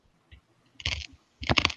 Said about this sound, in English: I can hear your feet crunching in the snow.